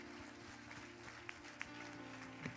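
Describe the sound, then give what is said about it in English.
A church audience claps together in praise to the Lord for the church's youth, a steady, dense wash of applause lasting a few seconds, with a low sustained tone humming underneath and a few sharper claps popping out. “Let's give a hand clap of praise to the Lord for what he's doing in our youth.”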